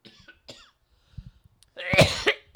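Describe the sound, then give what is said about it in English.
A person coughs: a couple of short, dry coughs, some quieter throaty sounds, then a loud, harsh burst of hacking coughs at the end. “That's the first time I've coughed in 2 years.”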